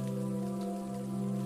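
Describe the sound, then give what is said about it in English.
Steady rain patters continuously on a rainy day at a charming bakery, over a sustained low humming drone, the downpour even and unbroken for the whole moment, with no voices present. “One by one, each visitor delights in the experience of Lily's charming bakery on this rainy day.”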